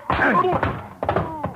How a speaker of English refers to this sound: When he went down that time, he took the chair, Rodell's overcoat, and half the stuff on the desk with him.